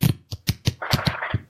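A deck of cards is shuffled for a game called a song: a few quick, crisp taps followed by a dense, fluttering riffle, with no voices.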